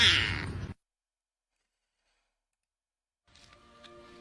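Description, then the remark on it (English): A toy cat gives a short, bright electronic meow, followed by about two and a half seconds of silence, then a fainter buzzy electronic tone with light clicks. “Meow, see? Meow.”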